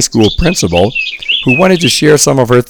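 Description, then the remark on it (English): A person talks steadily over a phone line from Indianapolis, Indiana, sitting outside, while birds chirp in the background, thin high tweets threading through the pauses, fairly quiet. “we hear the birds chirping in the background”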